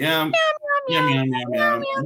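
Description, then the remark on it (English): Two voices sing-song a string of cat-like meows, one lower and one higher, imitating a cat in a bouncy, tuneful jingle, several drawn-out harmonic meows in quick succession, loud. “No, you were like meow meow. You were doing like a remix. Meow meow meow.”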